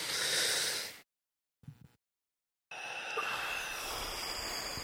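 Deep breaths drawn in and pushed out during a breathing exercise: a long airy exhale, a pause with a brief snuffle, then another long, steady breath. No talking.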